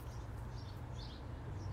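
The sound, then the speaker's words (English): Faint birds, many of them, chirp now and then over a steady low rumble of background noise, with several brief high calls scattered through the short outdoor moment, on a hot, dry June day of about 97 degrees. “A lot of birds right now.”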